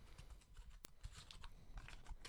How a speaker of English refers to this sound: You can hear right there. They're being shuffled. I'm currently getting one out. Going to read it and then read the comment.